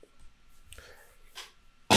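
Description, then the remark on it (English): A sudden, loud cough from a person battling a cold bursts out at the very end after a quiet stretch with a couple of faint breathy sounds, cut off abruptly. “Sorry, battling a little cold. Both of us have a cough.”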